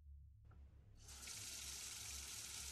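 water running

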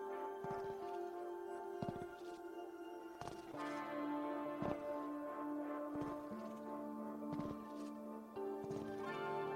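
footsteps approaching

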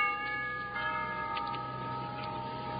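doorbell ringing

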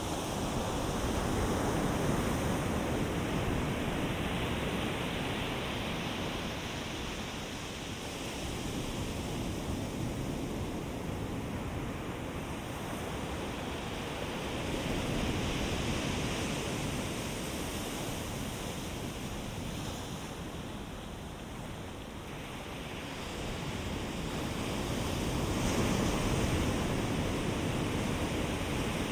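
ocean waves washing ashore

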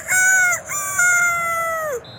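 rooster crowing

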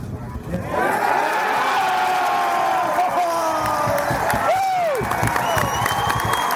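stadium crowd cheering

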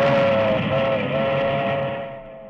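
passing milk train

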